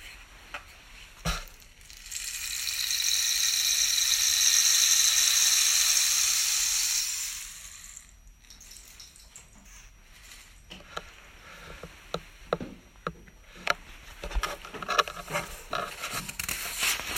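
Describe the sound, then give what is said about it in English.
Grit or dry seeds pour through a cactus in a bright, steady hiss that swells and fades over several seconds, followed by sparse, irregular ticks and light patters. “Who cares if the music that transpires is the fall of grit or dry seeds through a cactus?”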